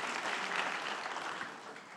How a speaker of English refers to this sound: So let's give them all a round of applause, please.